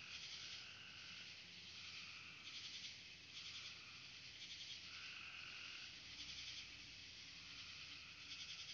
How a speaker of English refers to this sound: Seems like crickets are having a say. And other things too that I do not know. The sounds of the wood.